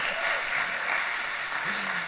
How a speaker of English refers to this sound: Let's give anybody who's new here today a nice clap.